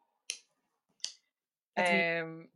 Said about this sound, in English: Are you winking or finger guns? I'm winking, but I'm like clicking my mouth to try and visually indicate, but anyway.